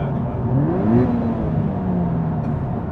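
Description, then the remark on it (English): A car engine revs up briefly as the driver downshifts on the A14 road, heading toward Northamptonshire, the pitch rising and then settling back into a steady hum, heard from inside the vehicle. “Oh, I might downshift.”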